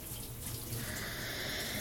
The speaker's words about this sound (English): Even with the hot water spraying on my skin, I can feel my nipples heat up.